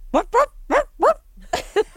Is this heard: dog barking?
yes